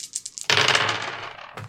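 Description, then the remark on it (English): Three six-sided dice clatter and tumble across a table in a quick rattling burst, rolled to decide a wilderness encounter, settling after about a second, with a brief extra clack at the end. “Okay, so now we're going to roll 3d6, and if any of them come up 6, we will have a wilderness encounter.”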